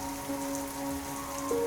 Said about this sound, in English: The wind and rain are getting stronger now.